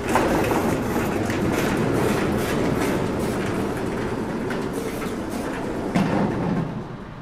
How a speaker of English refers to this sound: Behind this wall, I just so happen to have created a life-sized RC car. What are the chances? It's very weird. It's a coincidence for sure. Huh. But yeah, go ahead and open that giant door.